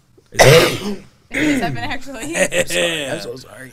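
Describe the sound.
A single loud cough bursts out over people talking, then after a brief pause people start talking, with what may be a little chuckling mixed into the voices.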